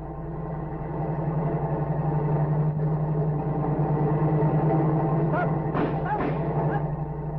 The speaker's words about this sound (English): Wait, there's a car coming. Without lights.